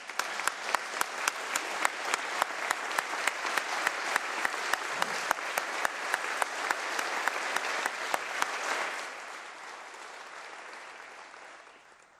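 A large audience applauds steadily, a dense wash of clapping with sharp individual claps standing out. It holds for about eight seconds, then gradually thins and fades away.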